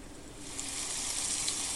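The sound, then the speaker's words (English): A rustling leaves ambient sound effect played at 50% level: a steady, soft rustling of leaves, a continuous airy hiss with faint crackly detail and no distinct individual events, playing evenly at a moderate-low level with no voices. “I want to hear the leaves.”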